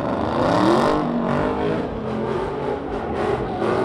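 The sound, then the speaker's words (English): Loud, throaty engines of a black Dodge Charger and a silver pickup truck rev and roar continuously, pitch rising and falling as they spin donuts around a red car at a car meet on a parking garage roof, with a constant wash of tire and exhaust noise and no talking. “A black Dodge Charger and a silver pickup truck spun donuts around a red car.”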